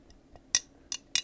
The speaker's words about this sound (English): Let me get a sip of my lemon water before I get into this, because literally my anxiety. Oh, listen to that, it's like ASMR. Oh, the water, can you hear the water?